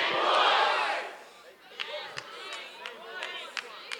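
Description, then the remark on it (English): A church audience, responding to the preacher's call to scream, erupts in loud, unified screaming for about a second, then it fades into scattered shouts, murmuring voices and a few sharp claps. “Somebody scream, same voice.”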